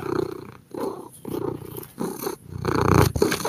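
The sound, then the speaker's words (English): A cat purrs loudly, a steady rumbling drone pulsing in rhythmic breaths with brief pauses between each cycle. “He's just purring up a storm over there.”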